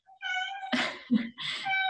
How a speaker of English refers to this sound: Is it your cat? This is my cat. That's so awesome.